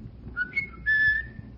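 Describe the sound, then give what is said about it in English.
A person whistles a short family signal call: two quick chirped notes followed by a longer, steady held tone, clear, with no talking and only a low background hum. “I come from Vienna, and we used to have a large park in front of the house, and if you couldn't see each other, we'd just whistle. We'd find each other that way.”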